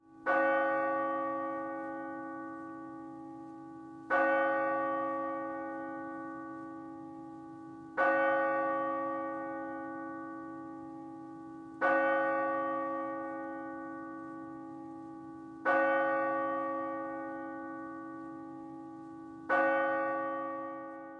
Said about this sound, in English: Take a while. I mean, if there's millions killed, it was kind of annoying too to listen to. Yeah, every church, you know, or every I can't remember what they call them now. Every place of worship ringing its bell.